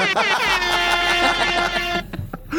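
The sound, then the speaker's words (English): A single loud, sustained air horn blast rings out for about two seconds with a steady brassy tone, then cuts off into a brief bit of background noise. “Where's the air horn? There you go.”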